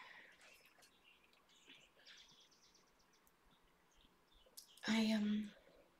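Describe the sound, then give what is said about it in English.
Outdoor birdsong: several small birds, at least four different kinds, chirp and tweet, scattered across the first few seconds, then a brief louder, rougher burst of noise cuts in near the end. “I don't know, like I love the sound of my outside right now. All those birds and the bird calls, and yeah, they're all birds.”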